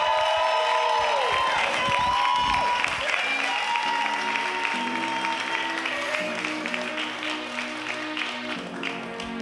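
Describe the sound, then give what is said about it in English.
An audience at a storytelling event claps steadily and cheers with scattered whoops, a dense wash of applause, while musical tones hum underneath and a few voices call out, welcoming a storyteller coming up to the stage. “Give it up for Bria Watts coming up to the stage.”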